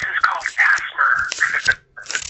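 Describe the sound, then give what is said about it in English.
Paper is crinkled right next to the microphone as ASMR, with crisp crackling bursts rustling almost continuously, pausing briefly near the end before starting again. “So, I just did a little paper next to the mic.”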